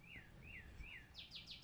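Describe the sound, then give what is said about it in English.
A bird chirps in the trees of a yard: three sliding, downward whistled notes followed by a quick run of four sharper, higher chirps, fairly faint against a low background rumble. “Is that a bird? You hear that?”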